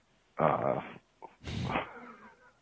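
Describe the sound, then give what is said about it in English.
A dog named Sonny Bear growls and whimpers: a rough, sustained vocal rumble, a short pause, then a breathy snort that trails off into a softer whine. “So I was out there with my dog, Sonny Bear.”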